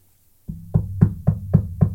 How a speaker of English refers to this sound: That's me knocking right now. That is me knocking on wood.